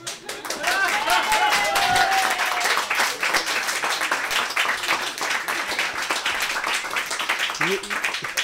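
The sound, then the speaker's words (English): Sustained audience applause, a dense wash of many hands clapping at a steady loud level throughout, with a few faint whoops and cheers rising briefly over the clapping. “That applause may have actually saved me from some serious emotional trauma tonight.”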